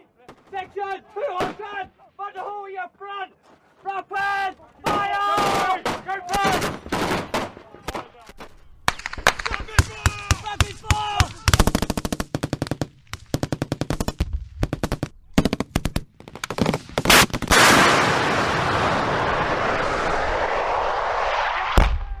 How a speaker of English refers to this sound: Oh, 040 Alpha, confirm that's bombs dropping on Man's Drac.